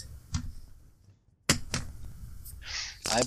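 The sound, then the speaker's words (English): Fancy dice clatter across a table for a constitution saving throw in a tabletop game, with a handful of sharp, irregular clicks and knocks following a brief quiet pause, under a low background murmur. “I'm using the fancy dice this time.”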